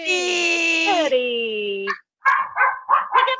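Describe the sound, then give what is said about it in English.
A long, high, tonal howl-like whine stretches for about two seconds, then a short pause before a quick run of four or five loud barks from several dogs, the dog Hedwig and her family, with Hedwig barking loudest. “You got the whole family there. Yes, we're all here. That's me in the background barking loudest.”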